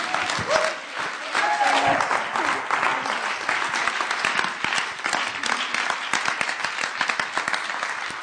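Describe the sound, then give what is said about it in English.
An audience in a church breaks into sustained applause, a dense, steady wash of many hands clapping for several seconds, with a few brief voices or cheers rising early on before the clapping carries on evenly. “So just give her an applause and thank you.”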